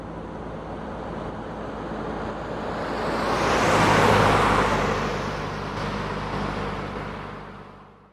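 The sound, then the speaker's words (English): Steady road noise from a car driving along and taking a highway exit in the right lane, the tire and engine rumble swelling to a loud peak midway and then easing off. No one speaks. “Okay, right lane. This is our exit.”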